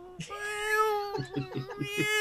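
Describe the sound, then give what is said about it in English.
A cat lets out a long, drawn-out meow followed by several shorter, choppy cries in quick succession, moderately loud. “My cat's over there in the corner in my chair spinning it around in circles.”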